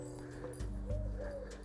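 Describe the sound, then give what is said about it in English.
A cuckoo calls during a walk on a quiet morning, a couple of soft, hollow, two-toned notes rising over a low outdoor rumble and faint jangling, with no one speaking. “Well, can you hear that? It's a cuckoo.”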